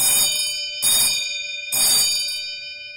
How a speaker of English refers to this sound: It still has working features from its past, such as a bell system to ring the kitchen for service.